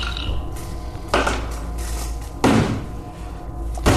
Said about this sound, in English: but when he slammed his fist down on the table, it changed my number to an 18.